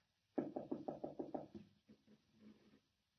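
A rapid series of about seven sharp knocks or rattles on a locked door, fairly loud, then a few softer, more irregular rattles trailing off. No one speaks.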